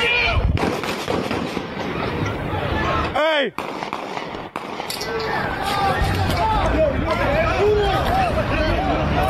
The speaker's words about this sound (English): Not okay, guys. Not okay. We got gunshots. We got gunshots.